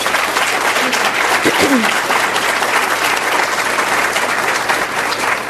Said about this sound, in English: We don't have enough opportunities to honor these people, so let's please, before we do anything else, give everyone who serves on the front lines a big round of applause.